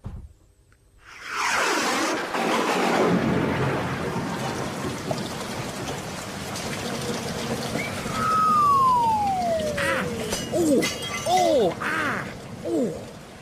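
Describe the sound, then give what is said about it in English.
A rain and thunder sound effect: steady hissing rain fills the whole clip, opening with a rumbling thunder crash, while a few falling, whistle-like tones sweep downward over the rain near the end. No one speaks. “That doesn't address the rain. doesn't address the rain. The thunder.”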